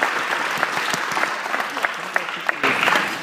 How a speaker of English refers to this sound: She thanked the union with some sarcasm for allowing her to ask a question of the other candidates on social housing support, with strong applause from the audience.